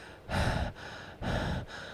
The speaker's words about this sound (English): And I'm going to be tearing up the studio closet, because I got to find you a windscreen. Because I hate hearing you breathing.